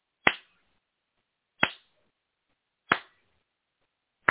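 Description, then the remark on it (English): Four sharp hand claps made to test whether the audio matches the video, at a slow, steady pace, each a crisp, bright smack with a brief decay, separated by silence and with no talking. “All right, let's see if the clap works.”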